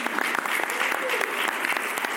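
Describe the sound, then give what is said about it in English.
A crowd applauds in a steady, dense wash of clapping that holds at an even volume for about two seconds, with faint voices mixed into the noise. “Thank you very much. Round of applause.”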